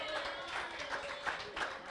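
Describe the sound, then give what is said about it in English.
An audience at a church sermon claps together in praise of the Lord, a steady, fast rhythm, the dense crackle of many hands rising in regular pulses, with a murmur of voices underneath. “Give that Lord a big hand clap of praise.”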